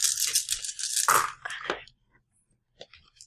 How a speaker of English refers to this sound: Roll your dice. I believe it's going to be 14 dice for the crane strike.